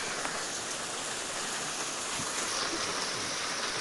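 Heavy rain pours down steadily, heard from a front porch, a dense, continuous hiss with scattered drips and splashes, loud with no talking.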